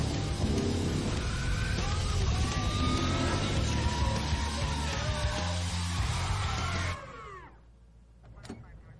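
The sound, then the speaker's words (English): Loud car tires screech and skid amid engine roar, with wailing police sirens sweeping up and down, all cutting off abruptly after about seven seconds into near quiet. “Skids, police.”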